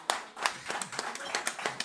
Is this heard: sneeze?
no